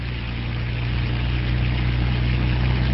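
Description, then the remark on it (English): A hovercraft rises from a beach, turns and speeds away across the waves with a loud, steady low engine drone and airy propeller rush that swells slightly as it goes. No one speaks. “As the helicopter flies on, Anton and Rod are helping their dazed cohort back down the beach and into the hovercraft. Rising from the sand, the vehicle turns and speeds out across the waves.”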